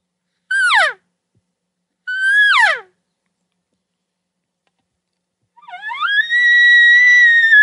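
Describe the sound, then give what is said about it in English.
Two short, descending mewing elk cow calls with a pause between. After a gap comes a rising, sustained high-pitched whistle, a light elk bugle holding steady for about two seconds. The calls are made to get a response from an elk that is close. “Let me hear the cow calls and let me hear the light bugle.”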